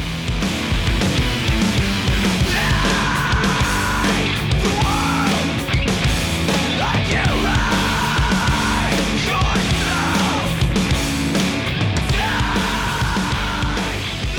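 A loud, dense rock song plays throughout, with thick, driving guitar filling the mix and a strained vocal line rising over it in repeated phrases.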